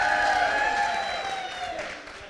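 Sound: audience cheering and clapping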